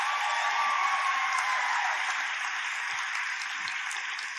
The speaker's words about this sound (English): the youth are getting ready because we have 14 youth getting water baptized today. 14 youth. Y'all better clap a little louder than that. They didn't make a putt. They're getting water baptized.